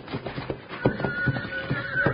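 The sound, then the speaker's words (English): A nervous horse, spooked by the man mistreating it, whinnies with a rising, wavering cry while its hooves stamp and scuffle in quick, uneven thuds, the commotion steady throughout the short moment. “He's got that horse so spooked up, it doesn't know what it's doing.”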